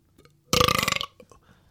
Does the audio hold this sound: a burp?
yes